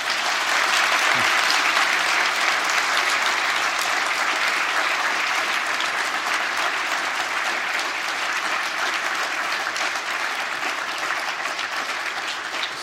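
Sustained audience applause at Studentersamfunnet in the evening, thanking the evening's guests: a dense, steady wash of many hands clapping at even loudness for about thirteen seconds, with no voices standing out.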